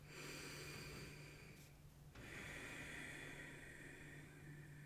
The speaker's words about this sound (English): Breathing in through our nose. Exhaling through our nose this time.